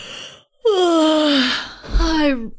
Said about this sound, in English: … will get up and stretch and let out a big yawn.